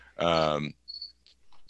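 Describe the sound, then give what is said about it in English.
A brief voice sound comes first, then a single short, high-pitched chirp from a loose cricket somewhere in the room, one of the feeder crickets kept for a pet lizard, followed by a couple of faint ticks. “I have a pet lizard in here, so I have crickets in it. Oh, okay. Well, he's got to eat, right? I think one got loose and it's in the room somewhere.”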